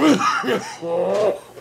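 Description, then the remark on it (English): A patient waking from anesthesia after an ECT procedure coughs and clears their throat, three rough, voiced bursts in quick succession, the last drawn out into a hoarse, groaning cough. “The coughing is actually a good sign because it means the anesthesia and muscle relaxant are wearing off and I'm beginning to breathe on my own again.”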